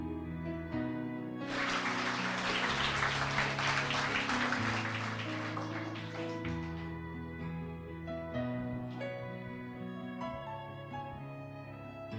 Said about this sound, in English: Let's give the Lord the loudest clap.